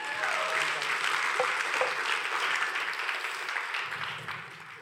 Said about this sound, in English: Come on. Clap your hands for Pastor.